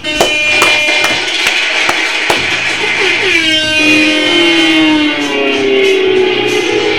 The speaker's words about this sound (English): So we got to give him some skibbity claps.